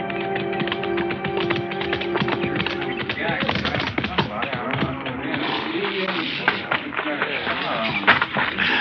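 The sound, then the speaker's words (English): Horse hooves clip-clop steadily, a busy run of overlapping hoofbeats that continues throughout, with faint voices and background bustle underneath. “I'll turn your horse in with a remuda.”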